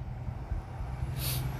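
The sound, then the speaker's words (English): A heavy truck carrying wooden pallets rumbles steadily, its low engine drone continuous, with a brief hissing burst like an air brake releasing near the end. “Another truck moving wood around, pallets that humans use in order to transport goods more efficiently”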